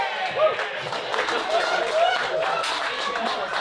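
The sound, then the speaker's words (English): An audience breaks into sustained applause after a joke's punchline, dense steady clapping mixed with crowd cheering and a few short whistles, holding at a fairly even loudness for the whole stretch. “What a nice way to get an applause break.”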